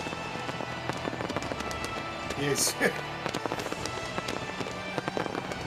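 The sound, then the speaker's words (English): Fireworks crackle and pop in rapid, irregular bursts throughout in a wrestling arena after a Triple H match, with one louder burst near the middle, as a voice speaks briefly over the noisy, echoing din. “Imagine that feeling, you're laying on the ground, you know, and the fireworks go off.”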